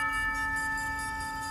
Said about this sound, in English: You are awoken to what you assume is the midnight bell chiming from the nearby tower.